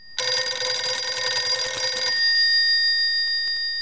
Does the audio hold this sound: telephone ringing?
yes